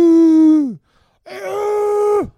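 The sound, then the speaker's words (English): A person's voice imitates an exaggerated sexual moan in two loud, sustained groans: the first a steady mid-pitched tone that sags at the end, the second rougher and breathier before dropping off abruptly. “I think that was your sex noise.”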